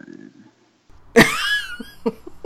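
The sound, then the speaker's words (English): A sudden, loud mouth-made fart noise, a single wet sputtering burst that trails off into a wavering tone, followed by a few short voiced sounds. “Fart noise.”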